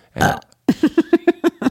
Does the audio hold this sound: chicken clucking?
no